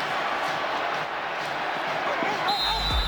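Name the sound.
referee's whistle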